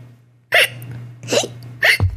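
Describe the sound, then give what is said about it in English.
A child imitates hiccups with three sharp vocal bursts spaced roughly evenly apart over a steady low background hum. “What's a hiccup? It's when you do this.”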